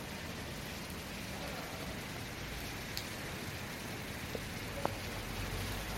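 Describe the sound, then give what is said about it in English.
Steady, even hiss of rain falling in Launceston, soft and continuous, with a few sharper drips ticking through it; no voices stand out. “It's another rainy day in Launceston, isn't it”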